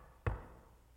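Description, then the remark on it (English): A single soft, dull knock on a wooden front door, short and thumping with a brief fading ring, heard on its own. “There's a light rap on the front door.”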